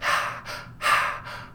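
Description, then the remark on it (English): Someone imitates heavy breathing: four loud, raspy breaths in quick succession, stronger pushes alternating with softer ones, with no talking. “The heavy breathing.”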